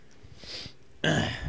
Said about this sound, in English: Had to clear my throat there.